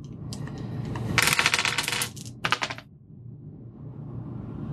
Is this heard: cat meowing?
no